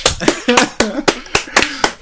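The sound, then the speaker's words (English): Hands clap about ten times in quick, slightly uneven succession, each sharp and fairly loud, while a voice murmurs underneath between the claps. “I'm just going to keep clapping until someone says to stop.”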